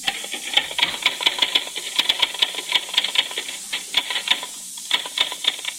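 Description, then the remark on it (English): A mechanical typewriter clacks away in quick, uneven bursts of sharp keystrokes, fairly loud, with a faint hiss in the background and no voices. “That sounds like someone typing. That's just what it is, a typewriter.”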